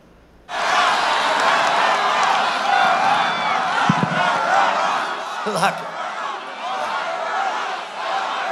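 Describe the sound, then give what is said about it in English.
A large crowd at a President Trump campaign rally bursts into loud, sustained chanting of "Lock her up" about Michigan Governor Gretchen Whitmer after a brief quiet moment, the massed voices blending into a dense roar that continues steadily to the end. “President Trump said yesterday that Michigan Governor Gretchen Whitmer needed to lift coronavirus restrictions, and the crowd started chanting, "Lock her up." Take a listen.”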